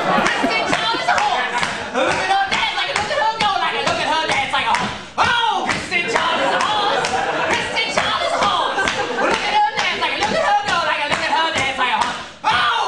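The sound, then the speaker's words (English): Steady, rhythmic hand clapping keeps time under energetic, wild-sounding singing, loud and close, running continuously with only brief dips. “does this maniacal singing and clapping.”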